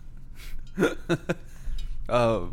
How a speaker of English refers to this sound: Yeah, no, straight up hiccup. This shit hurts.